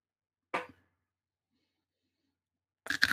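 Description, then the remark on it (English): Someone crunches on nuts: a short, sharp crunch, a long pause of silence, then a burst of rapid crackly chewing. No talking. “Just for that, I'm going to chew some extra nuts right in your face.”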